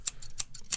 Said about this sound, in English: You think I'll find like cleaner scissoring sounds, though? Because you have the scissors like, right loud there.